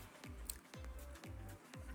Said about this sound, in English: Sorry for the chewing. Sorry. Pulling away from the mic. They're very sour.